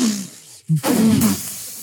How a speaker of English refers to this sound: Is that an airplane? Wait, it's getting closer.